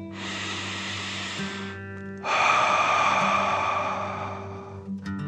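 A single deep relaxation breath, a long airy inhale through the nose filling the belly, followed by a louder, forceful exhale out the mouth as if breathing fire, over a steady low background hum.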